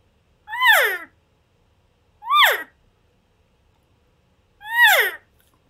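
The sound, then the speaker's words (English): Three cow elk calls blown on an elk call, each a short, high, nasal mew that rises and then falls, separated by roughly two-second pauses, fairly loud with no talking. “And again, it kind of goes back to, you know, that cow routine I talked about.”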